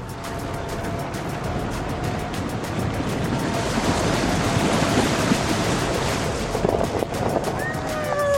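A truck powers through slush, a dense roar of engine rumble and churning, splashing hiss that swells louder midway and holds steady for several seconds, with no voices.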